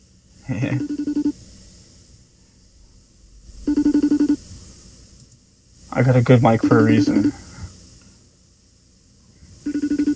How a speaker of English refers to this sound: I could call her. Give her a call. I have her phone number. Yeah. But, let's put on speaker. Ooh, I can hear.